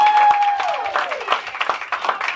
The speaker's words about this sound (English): Yeah, let's give her a round of applause, y'all.